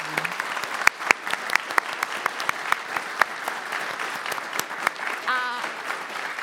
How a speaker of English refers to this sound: I did an online panel last year and it fills my heart. Big round of applause.